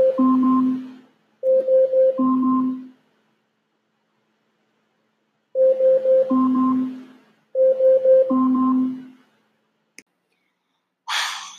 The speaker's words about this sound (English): At 10 o'clock in the morning, she woke up by her alarm.